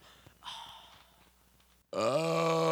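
A short, softer throaty rumble, then a pause, then a loud, drawn-out burp that swells up suddenly and holds steady to the end.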